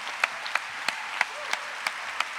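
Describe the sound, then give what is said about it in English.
An audience applauds all of the performers at the end of the night's show, a steady hiss of many hands with a few sharp, distinct claps standing out in a regular rhythm. It is fairly soft overall, and no one speaks. “How about another round of applause for all of the performers tonight?”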